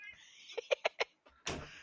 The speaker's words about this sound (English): Cat?